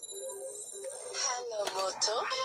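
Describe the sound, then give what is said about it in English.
A mobile phone ringtone rings for an incoming call: steady electronic tones, then a bright, sung-sounding melodic jingle ('Hello, Moto') with gliding pitches. It is clear, with no one talking over it. “Well, that's me getting a phone call. I apologize for that.”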